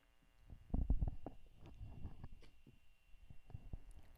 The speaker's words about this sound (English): Okay, the next one, hold on, let me get a sip of water.